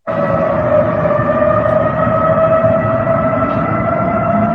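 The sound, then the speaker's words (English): Outdoor emergency warning sirens in Dallas, 156 of them set off by hackers who got into the emergency notification system, sound loudly and continuously, holding a steady droning tone over a rough, rumbling background for the whole stretch, with no voices. “Hackers got into the emergency notification system in Dallas and set off 156 sirens.”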